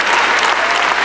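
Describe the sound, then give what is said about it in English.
An audience claps steadily, a dense wash of many hands with a crisp, bright texture that stays fairly loud and even throughout the brief moment, with no voices rising above it. “Did y'all notice how the claps went down a little bit right there?”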